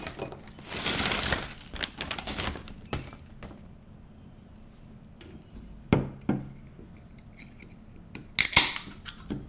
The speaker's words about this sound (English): enjoying her writing snack of choice, which is pretzels and sparkling water.